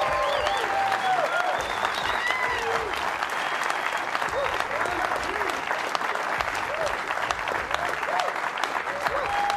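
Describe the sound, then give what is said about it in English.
A large crowd applauds steadily and loudly for the whole stretch, with scattered whoops and high cheering voices rising above the dense, continuous clapping, as the audience of the BYU Football with Kalani Sitake show on BYU TV welcomes the program. “What a crowd, what a night.”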